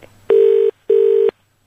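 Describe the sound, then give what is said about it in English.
Two steady electronic beeps from a phone keypad as a number is dialed, each lasting about half a second with a short pause between them, loud with no talking. “Will she answer the phone if she's at work?”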